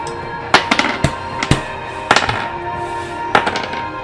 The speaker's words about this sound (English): Stop rolling those dice.